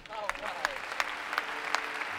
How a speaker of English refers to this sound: Well, I'll lead the applause for that.